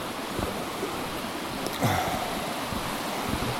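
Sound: rushing river water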